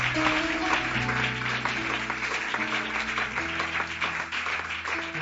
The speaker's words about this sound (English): a hand clap of praise here this morning.